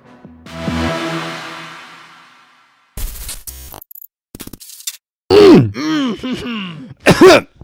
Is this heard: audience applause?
no